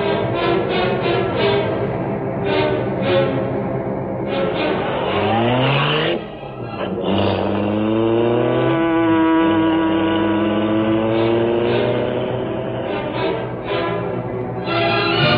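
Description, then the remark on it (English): A car engine revs loudly and steadily, its pitch sweeping up and down as the vehicle accelerates, shifts and drives on, continuous throughout with a brief dip midway. “While Cato guarded the car, the Green Hornet made a second call on a shop owner whose pavement was condemned.”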